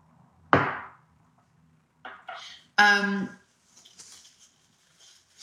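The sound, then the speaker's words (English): A dull knock of a cup or bottle, then a few short slurping sips of water and a brief voiced swallow or sigh, followed by faint clicks and rustles. No talking. “Okay, so let's take a sip of water.”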